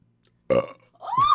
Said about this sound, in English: That was great. What happened? Did you do that burp on purpose? I did. Oh, man, that was awesome.